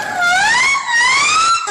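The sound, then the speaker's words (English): A ship's siren screams in a loud, continuous wail, its harmonic-rich tone slowly rising and falling in pitch with a brief dip partway through, sounding as the crew is ordered to abandon ship. No voices are heard. “And then the siren screamed.”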